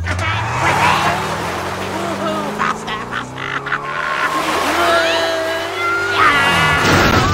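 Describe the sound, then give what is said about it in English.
A small go-kart engine whines and revs, its pitch rising and falling, while tires skid and squeal in bursts. The sound stays loud for the whole stretch. “And he turns that car into... What is that? Like, it's like a go-kart.”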